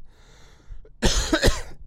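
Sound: coughing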